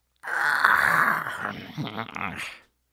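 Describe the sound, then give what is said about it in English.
A voice imitates a chipmunk's yawn: one drawn-out, groaning yawn of about two seconds, rising and then trailing off into a squeaky, wavering finish. Moderately loud, with no other sounds. “You know, if you put your ear up to the snow right now, you can hear little animals start to yawn a little. You might hear a chipmunk do a...”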